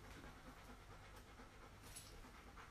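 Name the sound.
dog panting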